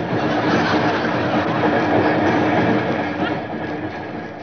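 A train running on rails, a steady, dense rumble and rattle that holds an even loudness throughout, easing slightly toward the end. No one speaks.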